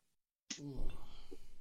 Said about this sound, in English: Here we go. Cracking a beer.